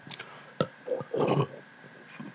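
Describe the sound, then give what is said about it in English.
A loud burp rumbles out for about half a second, preceded by a sharp click and a couple of short throaty grunts, then fades to quiet. “This is where I knew how to get all the burps out.”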